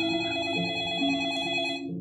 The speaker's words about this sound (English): And as soon as it's over, your phone rings.